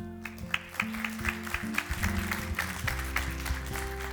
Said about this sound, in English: Just for the audio guys, ramp that applause up on the live stream so they think everybody went berserk. Well done. Well done.